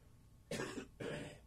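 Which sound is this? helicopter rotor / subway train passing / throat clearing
throat clearing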